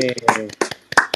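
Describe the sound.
A few scattered hand claps by the hosts of a Creative Talk live show, smeared by a mixer into a harsh, rushing, distorted wash like a waterfall, burst out irregularly while a woman keeps talking over them.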